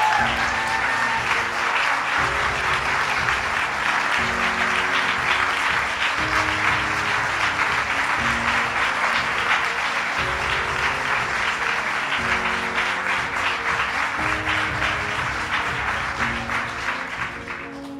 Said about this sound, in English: Sarah Weddington, who argued Roe v. Wade, here today on the 46th anniversary of Roe v. Wade. Let's give Sarah a big round of applause.